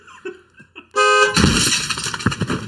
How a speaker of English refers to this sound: Car crash. It actually gave me a little bit of PTSD. It was quite loud.